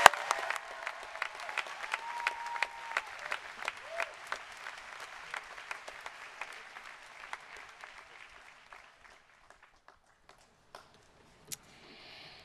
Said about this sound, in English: Please join me in a warm round of applause for Margaret Wang.